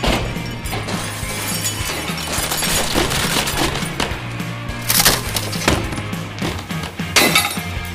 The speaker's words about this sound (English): Within seconds, all five members of the troupe willfully tore apart the dressing room. They cleared off every surface, chucked furniture, broke glass and mirrors. 10 minutes straight, they wreaked havoc.